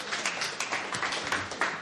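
A crowd clapping together, a dense, steady patter of many hands with crisp overlapping slaps that holds an even loudness throughout.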